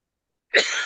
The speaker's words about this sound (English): Sorry, pardon me. As he coughs. Looks for his water.